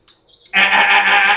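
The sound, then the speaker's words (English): A voice imitates a sugar glider's crabbing call, the alarm sound sugar gliders make when they think everyone around them is dead: after a brief quiet moment, a loud, harsh, buzzing sound starts abruptly and holds steady for about a second. “No, they make that sound. It's called crabbing.”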